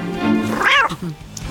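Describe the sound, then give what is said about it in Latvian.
A cat lets out one drawn-out meow that rises and falls in pitch, loud, followed by a couple of softer, lower murmurs against a faint background hum. “Un tad tavā dzīvē parādās kaķis.”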